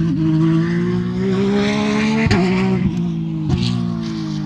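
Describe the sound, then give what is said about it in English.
A race car going very fast roars loudly and steadily at high revs, staying on a stationary set of mics the whole time, with a few quick sharp breaks in the tone like rapid gear shifts. “Even though that's a stationary set of mics. And this car is going very fast.”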